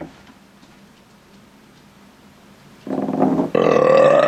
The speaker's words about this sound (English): Did you just fart? Oh, that sounded.